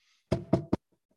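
A man bangs on a door: three loud, heavy knocks, the last one coming quicker than the first two, followed by faint trailing thuds and then quiet.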